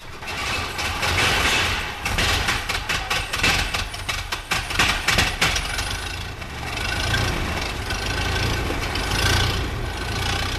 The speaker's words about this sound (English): One car which took part in this year's rally is identical to these. The 60-horsepower 9.2-litre engine is a formidable machine even today.